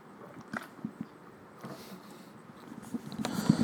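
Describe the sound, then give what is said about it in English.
Crunchy chewing of pumpkin seeds, repeated irregular bites and crackles that grow louder and denser toward the end, with no talking. “I'm eating pumpkin seeds, guys.”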